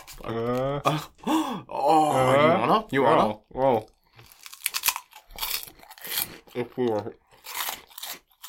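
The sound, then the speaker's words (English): Loud, wet crunching from someone chewing a big mouthful, with crisp bursts of biting interspersed among groans and excited vocal sounds. “God damn it, we're taking our crunch to the next fucking level.”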